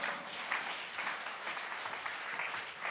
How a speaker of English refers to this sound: Clap your hands.